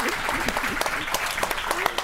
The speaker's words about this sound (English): Guys, let's give a big round of applause to our panelists. You guys are awesome. Thanks, mate.